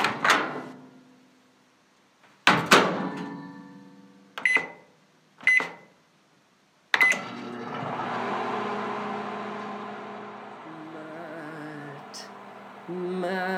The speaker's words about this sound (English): It's the microwave